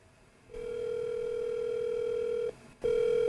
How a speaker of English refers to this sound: Let me see if she picks up the phone, because I can hear the water running.